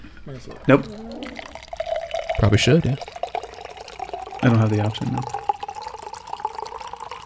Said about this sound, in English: He's pouring. It looks like eggnog for some reason. Does it gets a little foamy once you give it a shake? Yeah, he shook it.